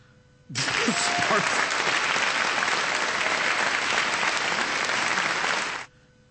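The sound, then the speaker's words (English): A dense burst of applause from a female-only studio audience with a few scattered cheers, starting abruptly, holding steady and loud for about five seconds, then cutting off cleanly. “That's heavy studio audience. Applause and sparse cheers.”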